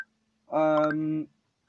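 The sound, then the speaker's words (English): A man's mobile phone goes off with a single loud, buzzy electronic tone lasting under a second, followed by silence and a brief click. “His phone's going off.”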